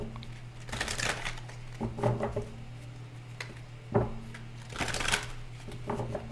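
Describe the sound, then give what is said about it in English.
A deck of tarot cards is shuffled for a reading in several quick riffling bursts with short pauses between, crisp papery flutters and soft taps over a faint steady hum. “So let's go ahead and shuffle this deck up real good and see what message come out for you, Leo.”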